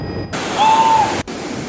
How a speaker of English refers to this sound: Seafoam covering beaches and reverse waterfalls as torrential rain and high winds hit parts of Australia.